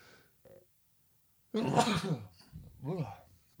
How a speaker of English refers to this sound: Oh, got to sneeze.